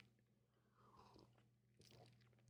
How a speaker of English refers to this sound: So right now I'm sipping on my wine, the usual Merlot that I kind of like. I like Merlot. Thicker than Cabernet, Pinot Noir.